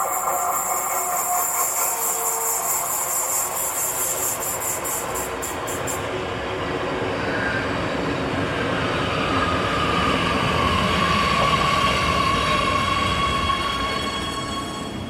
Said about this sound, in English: Okay, I'm going to wait on the train now. This is the train coming in the other direction.